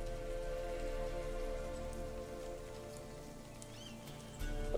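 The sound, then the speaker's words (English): Steady rain falls onto water in a continuous, even patter, moderately loud, with a low constant hum beneath it and no voices. “Yeah, rain always makes them jump.”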